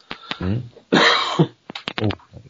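cough

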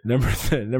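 yawn

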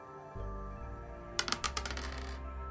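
dice being rolled

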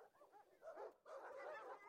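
dog

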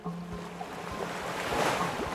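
ocean waves

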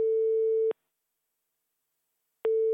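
telephone ringing tone

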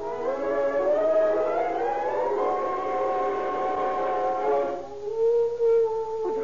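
dog howling

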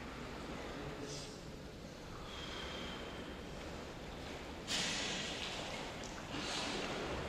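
deep breathing

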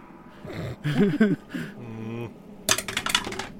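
dice being rolled

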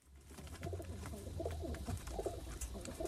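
pigeons cooing

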